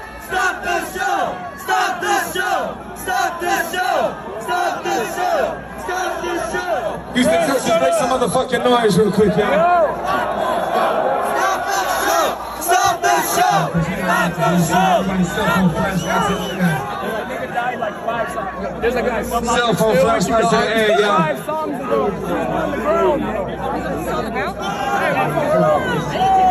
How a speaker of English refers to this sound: This is what was being chanted back to him while he was singing.